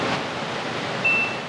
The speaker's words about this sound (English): The beeping, which you can hear, is our gas detectors, which is just checking the atmosphere.